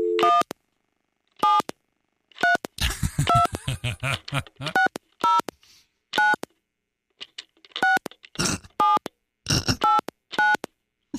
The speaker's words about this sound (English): Dialing. I'm laughing at the sound of the phone be like wiggling around as she dials with one finger on the table. It's amazing. It's wonderful.